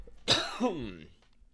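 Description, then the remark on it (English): A single fairly loud cough: a sharp, raspy burst followed by a second throaty hack that trails off into a brief voiced rasp, with no talking. “Cough.”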